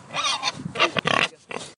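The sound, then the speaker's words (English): Two very large, very pregnant pigs grunting and snorting in a pen, a few short rough bursts with brief pauses between them, with no talking. “Then, just behind the white huts, in a pen all their own, were two very large and very pregnant pigs.”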